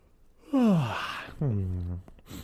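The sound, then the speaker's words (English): A person yawns aloud, a long voiced yawn that slides downward in pitch, then trails into a second lower, drawn-out exhale, moderately loud. “That was a good yawn.”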